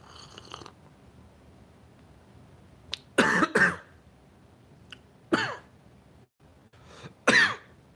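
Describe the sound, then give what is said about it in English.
A man coughs in several harsh bursts with brief pauses between them, followed by throat clearing. No speech, just the raspy fits separated by quiet breaths. “Why am I coughing like this?”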